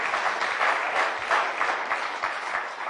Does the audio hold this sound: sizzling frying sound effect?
no